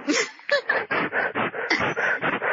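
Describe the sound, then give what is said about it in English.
A dog barks in a quick, continuous string of about ten sharp yaps, loud, with barely a pause between them. “do you have a dog? Yes.”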